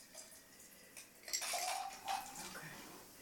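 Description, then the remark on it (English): Cocktails are being shaken and poured into wine glasses: a quiet rattle of ice and clinking glassware, then liquid splashing into glasses, with no one speaking. “Ooh! Yum! We've got shakeage.”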